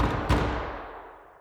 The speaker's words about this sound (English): Hark, more knocking.